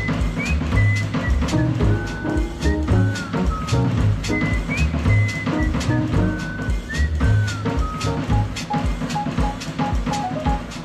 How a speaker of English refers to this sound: Something disturbed my sleep. Out through an open window came this simple melody. I heard somebody whistle.